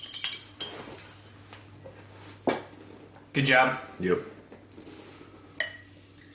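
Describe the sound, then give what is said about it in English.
Glassy clinks and a sharp crack as a bottle of High Water Brewing Campfire Stout, brewed with graham crackers and molasses, is opened, then short bursts suggesting the stout being poured, with a couple of brief spoken words in between. “So, that's from High Water Brewing, Campfire Stout. Sweet. Crack that first.”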